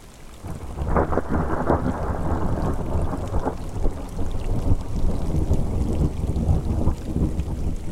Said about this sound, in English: I have come up here to experience the storm, the wind, the rain. I saw the gray clouds when I woke, remembered the giant ponderosa, and took the steep hike into the air that, as the morning came, grew colder. The breeze has turned to gusts.